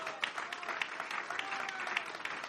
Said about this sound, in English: Give the Lord a good round of applause.